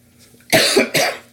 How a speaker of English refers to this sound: Man, I thought that I was going to get through without coughing again. I'm just going to leave this in here. I apologize. I'm hacking all over the place, but you know what? That is real.